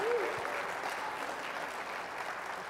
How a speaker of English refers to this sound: If you're going to clap, don't patty cake. Give God some praise.